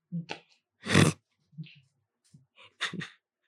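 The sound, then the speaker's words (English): A single sharp sneeze bursts out loudly in the middle, surrounded by a few short, quieter breathy vocal noises before and after. “God bless you.”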